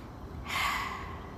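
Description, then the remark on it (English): A single deep, airy breath drawn after a brief quiet moment, rising quickly and then flowing steadily with a soft rushing quality, and no talking. “So learn how to breathe properly, deeply and fully. Breathe with me now.”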